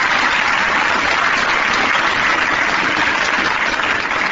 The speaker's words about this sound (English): Let's have a little applause here for Miff. How about it?